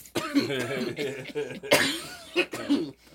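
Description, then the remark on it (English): A harsh coughing fit: several hacking bursts spread over a few seconds, broken up by strained, raspy voiced gasps and throat noises between the coughs. “Cough up a lung.”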